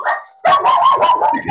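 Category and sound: animal, dogs barking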